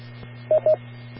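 Two short, clear electronic beeps in quick succession, tonal and mid-pitched, a radio transmission beep following a break in a caller's transmission as he gives his name, over a steady low hum of static.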